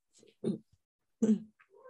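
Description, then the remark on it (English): A pet cat meows twice in short, separate calls less than a second apart, moderately loud, with faint soft noises in between. “Oh, hello, kitty.”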